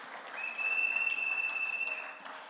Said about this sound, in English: A round of applause for all our contributors. Thank you so very much. This is a great church to be.